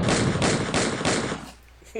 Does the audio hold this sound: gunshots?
yes